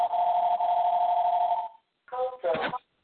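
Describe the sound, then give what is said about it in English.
A phone rings with a steady electronic tone for over a second, then after a short pause two more bursts of ringing follow, clear. “My phone is ringing here.”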